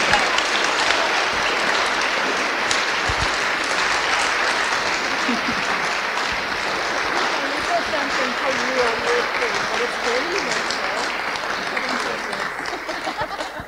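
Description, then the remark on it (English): An audience claps and cheers together, a dense, steady wash of applause lasting the whole stretch, with scattered whoops and voices rising above it partway through. “Should we do a little cheer and a clap?”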